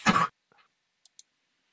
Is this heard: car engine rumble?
no